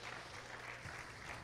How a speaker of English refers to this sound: Somebody clap their hands. It's getting too quiet in here.